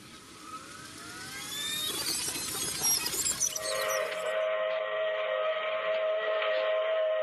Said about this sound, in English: Well, I hear that train a-coming. It's coming round the bend.